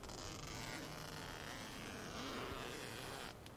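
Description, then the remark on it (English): A tent door zipper is drawn open in one long, steady pull, a raspy rough scratching that runs for a few seconds before stopping; fairly quiet, with no talking. “Oh, zipper sound.”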